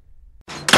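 A door slammed by kids: a brief rattling noise builds into a loud, sharp bang, all within a fraction of a second, with no voices.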